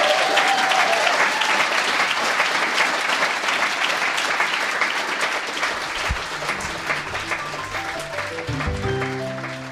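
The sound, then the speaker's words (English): An audience applauds the readers at the end of a reading event, steadily, dense clapping at an even loudness for the whole stretch, tapering slightly, while a few low sustained musical notes come in under it toward the end. “Anyway, you guys, one more round of applause for the readers tonight.”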